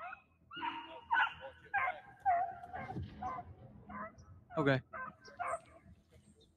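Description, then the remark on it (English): Several hunting dogs yip and bark in quick, excited bursts, fairly loud, with high whining cries mixed in and a person speaking briefly among them, as the dogs maul a rabbit. “The dogs are mauling a poor bunny rabbit.”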